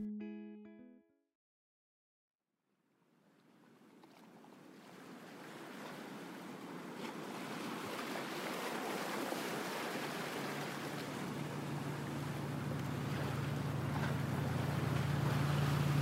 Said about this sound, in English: The water from the chilly ocean is splashing into your boat as you look ahead to see a beach